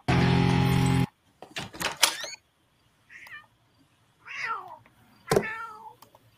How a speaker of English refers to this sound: Aw, I think your cat wants to come in. Here, kitty kitty. I didn't know you had a cat. We don't.